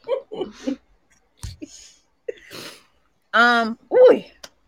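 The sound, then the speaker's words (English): A single loud sneeze: a drawn-out voiced build-up breaks into a sharp burst, preceded by a few short breathy sniffs and catches of breath. “A sneeze was coming.”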